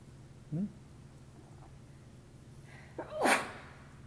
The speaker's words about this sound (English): Bless you. May your soul not escape out of the top of your head. Or out your nose. That's why we say bless you. It's old, very old European custom that when you sneeze, you can die. You can pass away.